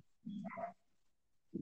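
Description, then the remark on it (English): A dog barks, a faint yelp-like bark followed after a pause by a second, shorter one, with no voices over it. “We got dogs in the background.”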